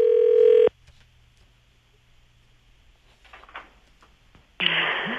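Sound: telephone dialing and ringing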